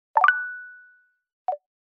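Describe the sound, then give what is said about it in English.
A Tinder dating app message notification chime on a phone: a quick bubbly cluster of plucked tones that rings out and fades, followed about a second later by a single short blip. Clear, with no talking. “I started to have fun, and I realized that part of that fun had to do with the sounds I was hearing.”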